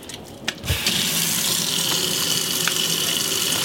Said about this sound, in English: I could help you out and, like, turn the water on and stuff, but I'd really just rather not.